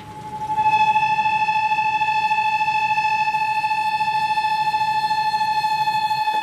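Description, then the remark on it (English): The kettle used for kākāpō chicks whistles on the stove in the hut kitchen on Whenua Hou, one steady, piercing tone at an unchanging pitch throughout, loud and continuous over a low, murmuring rumble underneath. “It sounds a bit like a factory, but that's actually the whistle of a kettle on the stove.”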